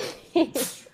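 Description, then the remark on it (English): A single quick sneeze, with a short voiced intake followed by a sharp, breathy burst, moderately loud, with no talking around it. “Bless you.”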